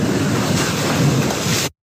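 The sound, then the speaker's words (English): Steady rush of ocean waves with blustery wind buffeting, a dense continuous roar of surf that cuts off abruptly into silence after under two seconds. “I'm in the ocean.”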